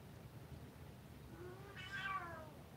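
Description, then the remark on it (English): A single drawn-out meow from a female cat rises and bends in pitch, clear, over a low background hum with no talking. “I don't know what you want, but I'm still doing the show. I don't think you ate all your food yet. Anybody want to buy a cat?”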